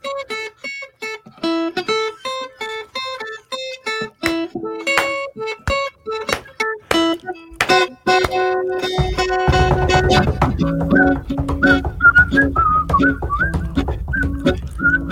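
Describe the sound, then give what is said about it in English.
A short stretch of upbeat transitional music played on a radio show while a caller is on hold, with no voices: bright, staccato melodic notes and sharp percussive hits, then fuller sustained tones and a steady bass line join for the second half. “We'll play a little transitional music.”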